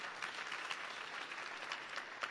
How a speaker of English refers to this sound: Okay, let's clap for Jesus.